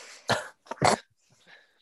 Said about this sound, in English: I just nearly coughed, laughed at the same time. It's not good.